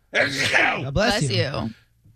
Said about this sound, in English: God bless you.